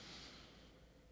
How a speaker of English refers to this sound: Breathing in deeply through your nose, like actively breathing, not just shallow mouth breathing, not just not breathing.